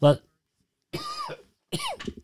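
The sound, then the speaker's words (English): A person coughs three times, a short sharp cough followed after a pause by two longer, rougher, throaty coughs in quick succession. “Couldn't get to the cough button soon enough.”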